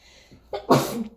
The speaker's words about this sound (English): Bless you.